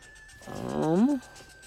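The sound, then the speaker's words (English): A single short lion roar from a lion pen swells up and breaks off after about a second, loud, with a faint steady hum underneath and no talking. “Isn't this the lion one? Oh, yep, there's the lions and the person.”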